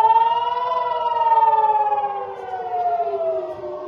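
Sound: air raid siren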